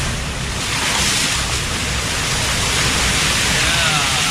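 Loud, continuous rush of sea waves breaking and churning around a boat, a broad roaring wash with wind buffeting the microphone and no clear pauses.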